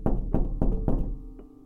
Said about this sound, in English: As he was dozing off, he heard a large knock at the door.